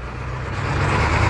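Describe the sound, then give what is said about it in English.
A monster truck engine runs steadily while people ride on the truck, a loud, continuous low rumble with a broad roar on top that swells slightly toward the end. No one speaks. “Well, I just wanted to give you guys some background noise as we are on the monster truck”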